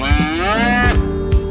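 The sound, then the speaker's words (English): A cow's moo played from a sampler, sounded repeatedly at shifting pitches so it forms a short tune, loud with no talking over it. “We can make a cow song.”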